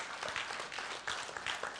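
An audience applauds together, a dense, steady wash of many hands clapping at once with no pauses, sustained at an even, moderate loudness throughout.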